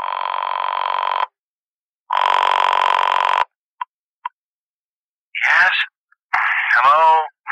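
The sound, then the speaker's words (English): A telephone rings twice with steady, buzzing electronic tones, each about a second long and separated by a pause, followed by two faint clicks and then brief voices near the end. “And I reached for my phone, which by now, thank heaven, was not in use.”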